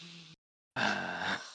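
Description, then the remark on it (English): A voice imitates deep breathing in through the nose: a short noisy breath, a brief pause, then a longer, louder rushing inhale with a faint groaning tone. “she's just like doing like really deep breathing in through her nose, and you can just like hear her like.”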